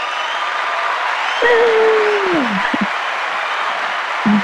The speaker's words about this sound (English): We'll give her, what is this? Is this the applause?